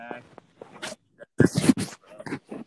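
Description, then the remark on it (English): A dog vocalizes in a few short, uneven bursts, with a louder cluster of yips or grumbles in the middle before trailing off into softer sounds. “see, even your dog agrees.”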